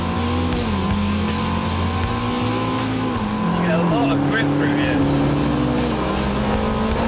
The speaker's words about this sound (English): The sound of the engine's lovely.